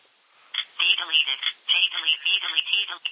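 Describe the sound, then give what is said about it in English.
Rapid bursts of electronic keypad feedback tones sound off in quick succession as buttons are pressed while typing on a phone, bright and thin as if heard over a phone line, with no clear talking. “But it's giving me output every time I hit a button, so I know what I'm typing.”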